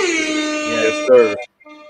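A loud, blaring air horn sound effect sounds in one sustained blast of over a second, played in tribute to Bill Russell, then after a short gap a fainter, thinner horn tone trails off.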